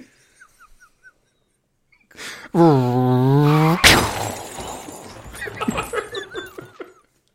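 A car crash: a loud wavering tone builds for about a second, then a sudden heavy smash, followed by scattered tinkling of glass and debris settling. No one speaks.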